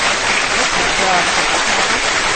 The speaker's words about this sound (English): Let's give him all a big, big, big round of applause.